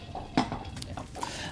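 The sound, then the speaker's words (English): A water glass is knocked over by Opie: one sharp clattering knock, followed by a few lighter clinks and taps of glass and tableware. The sounds are fairly quiet, and no one speaks. “Did Opie just knock over your drink on purpose? She knocked over my water.”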